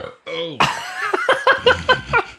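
A loud, close-up burp rumbles right into the microphone, followed by several quick rhythmic bursts of laughter.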